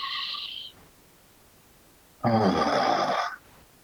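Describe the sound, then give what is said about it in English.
A short breathy intake of air through the nose, a pause, then a loud voiced sigh-like "ah" exhaled through the mouth for about a second during a breathing exercise, with no talking. “Take a breath in through the nose and release with an ah sound out your mouth.”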